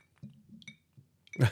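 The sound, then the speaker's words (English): Ice from the Cristalino Ice Company clinks against a glass in a few short, bright taps over a low murmur, ending with a louder, fuller rattle as the cubes shift. “Cristalino Ice Company, mm-hmm. Which, I mean, I've gotten my glass right now.”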